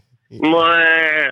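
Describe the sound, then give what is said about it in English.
A drunk person imitates a cow mooing with a single loud, drawn-out vocal call lasting about a second, with no other talking. “I'm making all these fucking weird noises. Fucking all drunk. Sounds like shit. A moo cow.”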